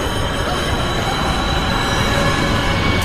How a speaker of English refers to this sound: He chases the bad guy out and then lets the bad guy die, number one. Lets him die by a subway train running him over.